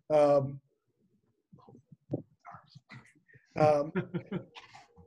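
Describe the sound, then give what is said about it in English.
A female hound dog gives two loud, drawn-out whining cries a few seconds apart, with softer whimpers and short snuffly vocal sounds in between. “the hound dog very much wants to intervene, so I'm gonna let her.”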